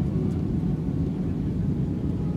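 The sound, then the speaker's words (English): A steady, loud low roar of airplane engines at takeoff thrust, a dense rumble that holds constant throughout with no voices or breaks. “With the thrust of the engines”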